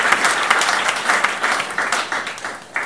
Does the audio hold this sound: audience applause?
yes